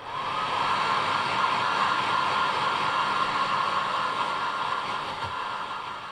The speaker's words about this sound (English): No, this is a hair dryer.